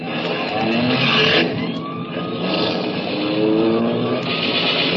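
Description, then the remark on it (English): A loud car engine revs hard and accelerates, its pitch climbing in repeated surges as the vehicle speeds off, with a steady roar filling the whole stretch and no voices. “Hey, Charlie, a prowl car!”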